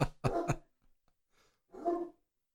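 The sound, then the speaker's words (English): A man imitates a dog in a house, giving a quick run of three sharp, voiced barks, a short pause, then one longer, rougher bark-like growl. “He likes to act like a dog. Yeah. And bark.”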